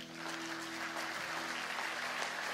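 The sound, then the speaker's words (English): An audience at a Mother's Day church service applauds a panel of mums joining the speaker on stage: steady, dense clapping from many hands, loud and sustained throughout, with a faint low hum beneath and no voices speaking. “I think we should give them a clap.”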